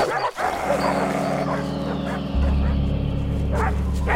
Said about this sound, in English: Dogs to the left of us, dogs to the right of us. A little milk bone among the bunch of us.